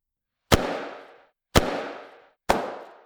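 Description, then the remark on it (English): Three loud, sharp cracking explosions go off in the trees overhead about a second apart as big steel nets are fired from the trees, each bursting suddenly and trailing off in a rumbling, echoing decay, with no voices around them. “The sound of sharp, cracking explosions in the trees above us.”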